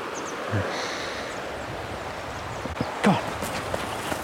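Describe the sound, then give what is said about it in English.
A dog, Idris, runs across sand by a river, its soft padded footfalls muffled beneath steady outdoor wind noise, with a couple of louder thumps standing out near the end. “This is the sound of Idris running on sand.”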